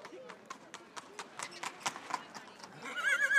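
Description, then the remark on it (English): Hooves clop repeatedly on a hard street in an uneven rhythm, ending with a high, wavering horse whinny, at the annual Carrimee Horse Fair where horses are traded on the side of the street, while murmuring voices of a crowd carry faintly in the background. “We're here at the annual Carrimee Horse Fair, where horses are traded on the side of the street, which has been happening for hundreds of years.”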